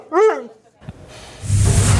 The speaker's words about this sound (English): As for Buddy, there is more treatment ahead, but it's expected he'll make a full recovery. It's pretty clear this dog still has a lot of bark left.